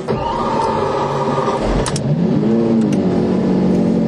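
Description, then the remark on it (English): A Lamborghini V12 engine revs up loudly, its pitch rising and falling in a sustained, throaty roar with a couple of sharp mechanical clicks partway through. “you know, that V12, when that goes away, it's going to be a sad day, but you drove the thing.”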